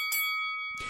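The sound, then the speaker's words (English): A bright bell sound effect rings out, struck once and left to hum with a sustained, shimmering tone, then struck again near the end. It is clear, with no voices. “I think that's bell worthy.”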